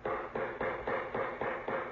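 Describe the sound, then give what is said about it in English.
A door knocker raps seven times in a steady, quick rhythm, each metallic knock ringing into the next with a fair amount of echo. No voices accompany the knocking. “Use the knocker.”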